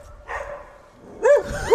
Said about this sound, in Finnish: Nyt täällä on pieni tilanne. Naapuripihaan saapui koira.